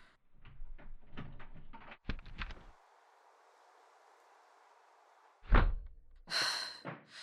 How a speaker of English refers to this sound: Someone's unlocking the door.